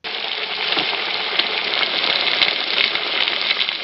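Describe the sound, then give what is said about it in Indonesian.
RH churros frying in hot oil, a steady dense crackling sizzle that holds at an even, fairly loud level throughout, with tiny pops scattered across it and no voices. “Jadi deh, tinggal goreng, nggak pakai ribet.”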